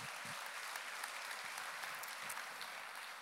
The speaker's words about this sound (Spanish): Le dan un aplauso al Señor si lo creen.